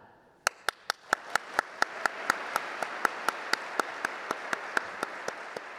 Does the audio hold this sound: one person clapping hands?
yes